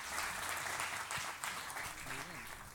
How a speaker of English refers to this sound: Y'all stand right here beside. Y'all give them a hand clap. They look good.